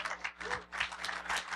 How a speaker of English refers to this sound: Ooh, that's a big applause.